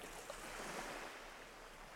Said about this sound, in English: You see, the ocean was just calm a second ago. Yeah. But it starts rocking. And it starts rocking. And the waves start getting a little bit bigger. And then a giant wave washes over, like, you and the ship and, like, hits the shore.